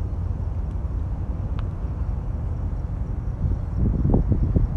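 Harbor ambience with a cool breeze: a steady, wind-like low rumble with a couple of faint, brief high ticks, swelling near the end into louder, uneven low churning.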